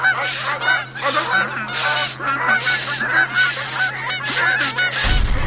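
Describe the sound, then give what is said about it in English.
A dense, continuous chorus of geese honking loudly, many overlapping calls over a steady low hum, ending in a sudden burst of harsh noise, as thousands of geese fly around and into a helicopter. “The copter's filling with geese.”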